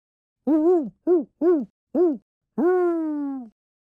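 An owl hoots in a clear sequence: one hoot, three short quick ones, then a long drawn-out final hoot, alone against a quiet background.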